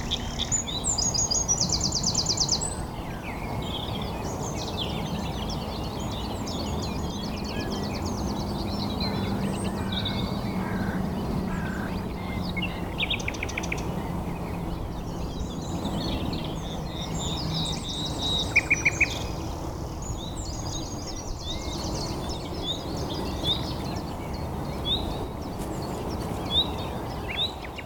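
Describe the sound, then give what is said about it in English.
A nightingale sings a long run of varied, high phrases at Knepp Wildlands in Sussex, in the British countryside: rapid trills, repeated notes and sudden bursts, heard throughout over a steady low outdoor rumble with no talking. “A quest for nightingales at Knepp Wildlands in Sussex”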